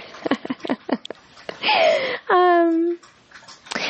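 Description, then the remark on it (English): A pet laps water in quick, rhythmic wet licks, followed by a couple of longer squeaky, whine-like tones before a few more splashy laps. “Oh, you can hear Sweetie. She's drinking some water.”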